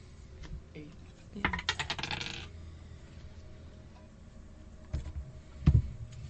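Dice clatter across a table in a quick rattling burst of small hard clicks that settles within a second, followed by quiet room noise and a couple of soft thumps.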